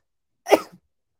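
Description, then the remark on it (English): A single sharp sneeze bursts out, a quick explosive burst that fades within a fraction of a second, with silence on either side. “bless you there.”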